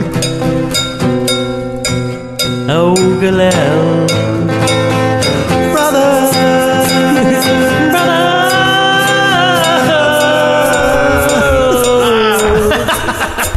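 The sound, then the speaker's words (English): Loud music with a steady run of sharp, metallic cowbell strikes opening the passage, layered over sustained melodic tones, and a brief spoken exclamation. “This is when we get a little of the percussion, thanks to the cow who donated his bell.”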